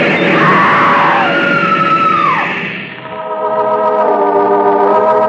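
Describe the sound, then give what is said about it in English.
A woman screams loudly and at length on a station platform, her shrill cry rising and falling over harsh, grinding metallic noise that swells into a sustained screech as a train grinds to a stop. “The woman screams.”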